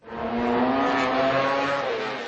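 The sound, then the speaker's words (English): A 240-horsepower road racing motorcycle engine revs hard, a loud sustained high-pitched whine that climbs slightly in pitch over a couple of seconds, with no voices. The motorcycle reaches 200 miles per hour. “240 horsepower, 200 miles per hour, two wheels with no roll cage. This is the world of motorcycle road racing, the pinnacle of motorsport.”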